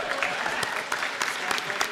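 Steady clapping fills the two seconds, a dense crackling wash of applause with sharper, louder claps punching through at a fairly regular pace, roughly three per second.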